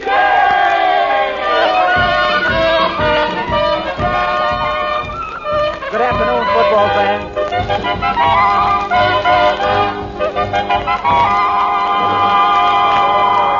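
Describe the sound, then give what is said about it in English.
A large football crowd at an exhibition game between Central Night School and John J. Boskowitz Night School roars and chants continuously, a dense wall of cheering voices with rhythmic shouted chants rising and falling, loud throughout. “This is the biggest crowd these old-timers have ever drawn”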